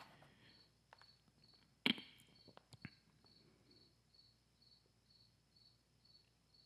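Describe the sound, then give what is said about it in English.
Crickets chirp in a steady, rhythmic pulse throughout, a thin high trill repeating evenly, with a couple of sharp thumps partway through and no talking. “Crickets.”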